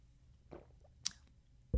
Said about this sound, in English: I need a sip of tea to kind of, whew.